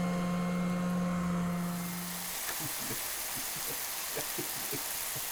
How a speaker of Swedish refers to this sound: Ja, ni hör. Alltså, steket är igång här. Vi har använt den här Robocops äldre kusin. Och vi har fixat köttet. Nu steks det.